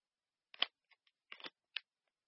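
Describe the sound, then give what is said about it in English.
A handful of sharp clicks in an irregular pattern, some in quick little clusters, with short silent gaps between them and no one talking. “What are you clicking on over there?”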